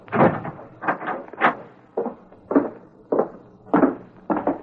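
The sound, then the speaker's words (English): A door is shut and locked, a quick series of wooden clunks and latch rattles over a few seconds, moderately loud with no voices. “I'll lock the door.”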